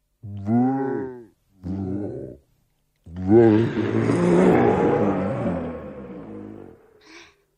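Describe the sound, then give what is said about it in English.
A person imitates Totoro's growl as in the Japanese dub: two short, deep, tonal grunts, then a longer, rough, rumbling roar that swells and fades, ending in a brief raspy breath. “Because Totoro, in the Japanese dub, Totoro growls, right?”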